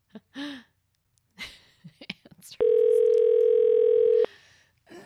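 A loud, steady telephone dial tone hums for under two seconds while placing a call from Deep Cove, BC to Toronto, then cuts off, preceded by a few soft breaths and light handling clicks.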